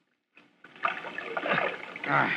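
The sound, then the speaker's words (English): Rowboat oars splash and slosh through murky water below a dock, starting softly and quickly swelling into a busy, continuous churning of paddled water. “Keep the boat moving forward”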